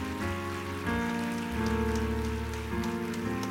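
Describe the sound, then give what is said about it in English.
A church audience gives God a hand clap of praise for their leaders, clapping steadily in a dense, rain-like patter while sustained organ or keyboard chords shift underneath. The clapping holds at an even level throughout, with no one speaking. “Can you again, before you take your seats, give God a hand clap of praise for your leaders?”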